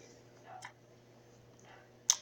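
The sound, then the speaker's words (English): Someone chews an apple: a few soft, crunchy bites spaced apart, ending with a sharper, wet crunch, over a low steady hum. “Sorry if you hear me eating.”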